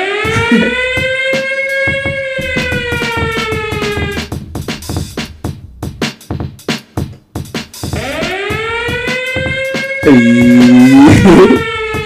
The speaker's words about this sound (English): Be like, kind of had that fire alarm, didn't it?